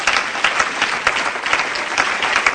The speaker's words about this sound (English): And everybody clap your hands to the Lord. Praise God.